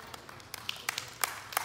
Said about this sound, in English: Oh yeah, that's good news. You can feel free to clap.